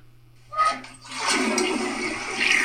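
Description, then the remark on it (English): A toilet flushes: a click and initial gush, then a steady loud rush of swirling water that continues to the end, with a low constant hum underneath. “That one's a toilet flush.”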